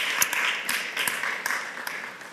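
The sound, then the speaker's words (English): A crowd applauds the worship team with a steady, dense wash of clapping, a few sharper individual claps popping out now and then, holding at a moderate level for the whole stretch. “Can we give the worship team a round of applause here?”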